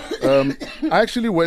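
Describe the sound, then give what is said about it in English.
A guest coughs: a short run of three voiced, throaty coughs with a bit of throat clearing mixed in, fairly loud and with no other sounds around them. “Coughing why are you coughing so all much?”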